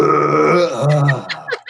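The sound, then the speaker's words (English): A person voices an exaggerated, drawn-out imitation of a belch, a loud, throaty groan lasting over a second that trails off into a few breathy bits at the end. “And it's just like it's like this like orgasmic belch.”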